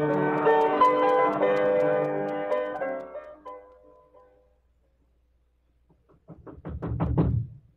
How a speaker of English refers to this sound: Who is it? The Marshal. Who do you think you are banging on people's doors this time of night?